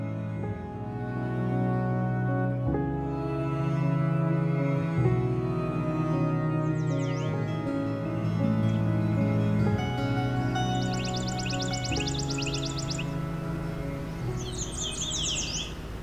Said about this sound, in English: So I'm at Long Point Provincial Park, and I've got chipping sparrow and yellow warbler.